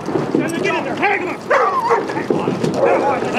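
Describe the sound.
A police dog barks and yelps repeatedly in quick, agitated bursts, loud, as it rushes a man who is tackled to the ground by officers, with muffled voices and commotion in the background.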